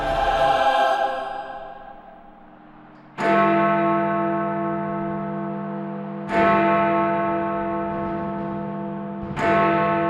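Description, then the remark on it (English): A clock chimes midnight with deep, resonant bell strikes, four heard here, spaced about three seconds apart. Each tone rings out loudly and hangs in a long, shimmering decay before the next strike. “A clock struck midnight as the elves roared their approval.”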